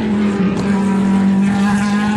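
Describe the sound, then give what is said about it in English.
Loud, steady engine roar of Le Mans racing cars, Porsche 911s and a Spyker, passing at speed, a deep droning tone with a buzzing, rasping edge that holds constant throughout, no voices present. “And here come the Porsches, the 911s. They sound like an angry team of wasps. That bass you're getting there is the Spiker. Spiker's gone through.”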